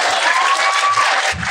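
Loud, dense audience applause fills the whole moment, a steady wash of many hands clapping with no pauses, and a couple of low thumps poke through near the end.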